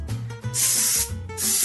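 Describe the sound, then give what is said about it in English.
An aerosol can of cooking spray hisses in two bursts onto a half sheet pan, a long spray followed by a shorter one, with no talking. “And you're going to want to either butter it or spray it with some cooking spray, which I'm going to do.”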